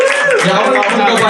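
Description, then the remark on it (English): An audience claps and cheers loudly and steadily in response to a call to make noise if addicted to their cell phones, with whoops and shouting voices mixed into a dense wash of applause. “If anyone's not clapping, they're the fucking Unabomber.”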